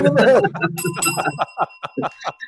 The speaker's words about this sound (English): Ding dong. Ring the bell. Ring the bell now. Ring the bell now.